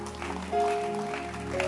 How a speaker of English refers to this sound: Oh, clap your hands. Clap your hands. Keep clapping. Don't stop clapping.